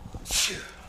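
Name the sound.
sneeze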